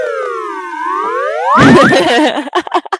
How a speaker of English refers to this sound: You want a slide whistle perfect sound effect.